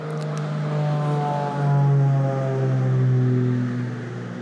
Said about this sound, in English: That was a little propeller airplane. That was not a big one.